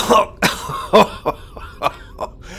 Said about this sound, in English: slammed his fist into Robin's stomach, causing him to buckle in pain, coughing out his victorious conclusion